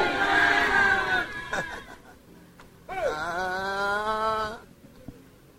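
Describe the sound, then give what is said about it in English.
A church audience shouts amen together in two loud, sustained bursts, many voices blending into a ringing, harmonic roar, with a brief lull between them. “Somebody shout aloud, amen in the church.”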